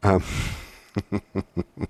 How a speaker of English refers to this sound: Not crying, I'm blowing my nose. It's allergy season in North Texas.